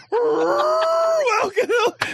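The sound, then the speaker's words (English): A person imitates a whale call with a long, sustained moaning wail that rises slightly in pitch, then breaks into a few shorter, wavering groans. “That's like an elephant sound. Whatever. That's not even like a whale sound.”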